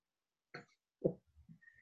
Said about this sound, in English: Wow. I need a mask before you cough again.